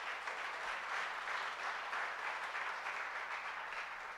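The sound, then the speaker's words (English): A crowd applauds steadily, a dense wash of many hands clapping at once with no single claps standing out, holding an even level throughout without any voices. “Somebody clap.”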